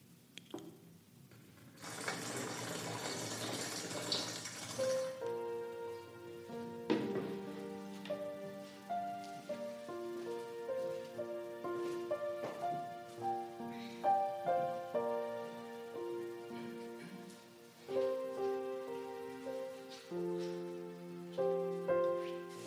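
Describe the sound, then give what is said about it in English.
A steady, hissing rush of water being poured or flowing during a blessing for the healing of the Animas River fills the first few seconds, fairly loud, then gives way to sustained melodic musical tones with no talking. “This blessing of this water is going to go for the healing of the Animas River.”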